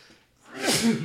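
A single sneeze erupts after a brief quiet moment, a sharp, breathy burst that swells and fades within about half a second, clear with no talking.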